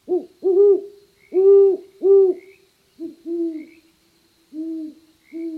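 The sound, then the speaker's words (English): A great horned owl in a city neighborhood gives deep, muffled hoots repeating in two rhythmic series of four or five notes, clear against a quiet night background. “Great Horned Owls in the Neighborhood”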